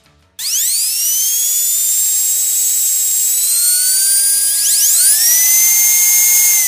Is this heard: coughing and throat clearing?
no